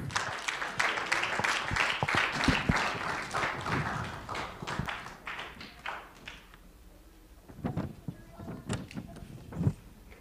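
An audience claps together in a dense, steady burst of applause that gradually thins out and fades, leaving only a few scattered, isolated claps at the end. No one speaks.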